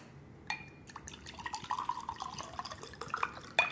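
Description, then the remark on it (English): Wine glugs steadily into a glass, a continuous pour with small splashes and a faintly rising pitch as the glass fills, ending in a brief clink; no one speaks. “It's going to be a little different because I'm drinking wine, but wine-a-dini.”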